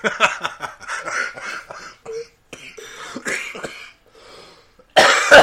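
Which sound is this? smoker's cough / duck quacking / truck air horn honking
smoker's cough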